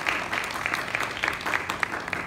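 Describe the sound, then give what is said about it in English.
A crowd claps steadily for a group of kids, a dense, even wash of applause with many hands blending into a bright, continuous patter that holds at a moderate level throughout. “And I was in the middle of answering a question to these beautiful, can we give these kids a round of applause?”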